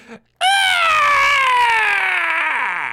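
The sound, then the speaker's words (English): A roughly humanoid creature with taloned claws, four empty red eyes and a face made from two birdfolk skulls emits a single loud, sustained shriek. The shriek has a bright, harmonic tone that slowly drops in pitch over a couple of seconds. It is preceded by a brief low sound, with no speech. “It gazes at you with its four empty red eyes and emits a shriek.”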